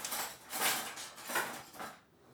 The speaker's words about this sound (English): Give me a second, I'm just turning over the chicken. What, it can't do it by itself? Lazy fucking chicken.